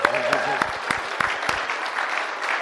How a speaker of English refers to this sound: If you want to say welcome home, if you weren't born here in New Zealand, if you don't mind this, if you don't mind standing up right now, and I just want to say welcome home. Let's give them a clap.